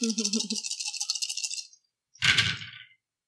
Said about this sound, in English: What is with these dice? Today. This is not a good dice roll. Oh, there we go. I got two.